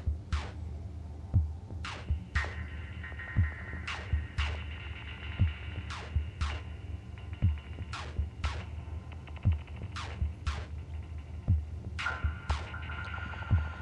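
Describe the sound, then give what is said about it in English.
A modular synth, run through a Recovery Effects Phantom Operator self-modulating filter, an Earthquaker Devices Afterneath and a Mr. Black Eterna reverb, plays a steady rhythmic pattern of low throbbing thumps and sharp, downward-sweeping filtered zaps, with sustained tones drifting through a hazy reverb wash; no one speaks. “the Phantom Operator from Recovery Effects, which is like this self-modulating filter modulation monster. It's really cool. And then into the Afterneath from Earthquaker Devices. And then into the Mr. Black Eterna reverb.”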